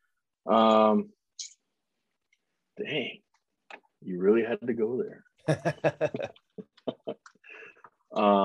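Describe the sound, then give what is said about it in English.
A short burst of rapid keyboard typing, a quick run of sharp clicks, interleaved with a man speaking before and after. “No, that's not me typing on my keyboard, Googling guys.”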